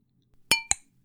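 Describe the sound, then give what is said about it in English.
Two quick, bright clinks of a wine glass tapping a wine bottle, the second ringing slightly higher, clear with a short glassy ring and no talking. “I clinked my wine bottle and my wine glass.”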